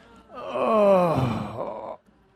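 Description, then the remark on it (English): A drawn-out, voiced yawn, made with the jaw open wide during a stretching exercise, rises and then slides downward, an open, moaning release of breath lasting under two seconds, fairly loud, with no words spoken. “Open your jaw wide. See if you can invoke in the yawn reflex and let out any sounds.”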